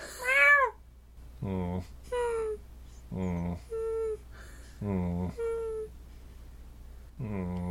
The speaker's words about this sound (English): All right, here we go, babe. I'm Alan Rickman, your caster. You're a weird cat.